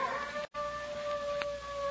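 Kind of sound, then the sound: animal, dog howling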